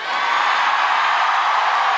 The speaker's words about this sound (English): Why are you cheering for this horse? It's so fucking scary. It looks like, you know how it looks like a scarecrow for evil alien crows.